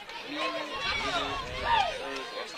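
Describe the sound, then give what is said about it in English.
A stadium crowd reacts to a rise-ball pitch called a strike, with a steady, loud roar of mixed voices and chatter that swells briefly toward the end before settling back. “Yeah, the crowd kind of agrees on that.”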